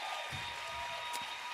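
A crowd applauds a woman as she walks up the aisle, in a steady, dense wash of clapping that holds at an even level throughout, with no distinct individual claps standing out and no voices.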